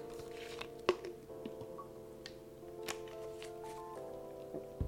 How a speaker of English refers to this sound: Now the next one, I'm just going to sip some water.